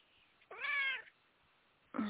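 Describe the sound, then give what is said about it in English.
A cat lets out one clear, drawn-out meow lasting about half a second, fairly loud. A shorter, rougher cat sound starts right at the end, and no one is talking. “Yes, and your kitty just said, yes, that's right.”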